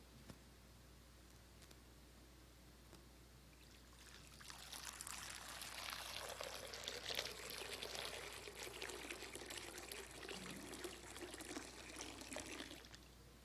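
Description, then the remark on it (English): After a few seconds of quiet, water is poured steadily into a baptismal font during a baptism, a bright splashing stream that runs for about nine seconds before tapering off. No one speaks. “We see and hear God's promises of grace in the waters of baptism.”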